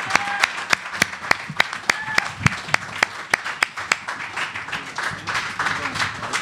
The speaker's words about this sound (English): First of all, a round of applause for Gordon Quinn.